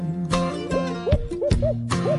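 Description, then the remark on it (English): An owl's hooting call is answered by the rattling gobbles of a wild turkey, several sharp gobble bursts in quick succession over a steady tonal hum. “Old Tom answering a hoot owl's call.”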